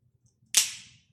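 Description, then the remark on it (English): A single sharp, bright crack of three pencils snapped at once by a man, loud and sudden, with a brief hissing tail that fades quickly. No one speaks. “Well, let's see how we do with three pencils.”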